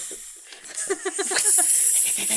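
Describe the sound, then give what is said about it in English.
A person imitates a rattlesnake's rattle with a sustained, hissy buzz that swells louder midway, with a few quick voiced pulses mixed in, fairly loud. “You want to be the tail of the rattlesnake?”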